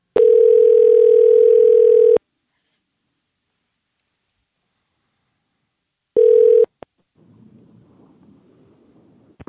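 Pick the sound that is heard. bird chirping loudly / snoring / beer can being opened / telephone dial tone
telephone dial tone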